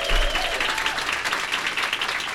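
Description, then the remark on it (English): Sustained applause from a live audience welcoming City Administrator Rashad Young, a dense wash of many hands clapping at a steady, fairly loud level throughout, with a faint tonal whistle near the start and no talking. “Let's prove we're a live audience and also give a warm welcome of applause.”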